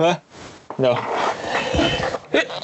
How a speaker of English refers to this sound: Wait a second, I'm going to sneeze.